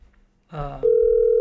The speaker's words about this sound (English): Let's see what happens here. It's ringing. It's ringing. Oh, that's too loud.